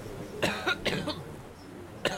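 A short run of dry coughs, three in quick succession followed by a single cough after a brief pause, with no talking.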